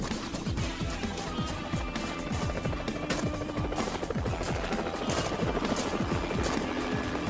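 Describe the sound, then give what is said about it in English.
A helicopter's rotor chops loudly and steadily at a helicopter pad on a roof, its rapid rhythmic thudding unbroken over a roar of engine noise, with no voices. “Secret helicopter pad on the roof.”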